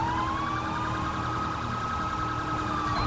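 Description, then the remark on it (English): A police car siren during a pursuit on westbound Interstate 5 sounds steadily for about three seconds, its high tone gliding slowly upward and holding, loud and continuous over a low engine rumble. “At least he's running a different siren than us, but I hate that they run the fucking phaser.”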